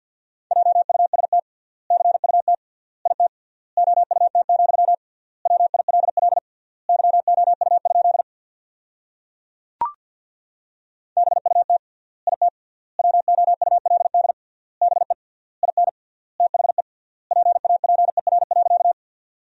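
Rapid Morse code at 50 words per minute sending sentences built from the top 300 words with triple word spacing: a single steady mid-pitched tone keyed in quick bursts separated by short word gaps, with a brief click and pause midway through and no voices.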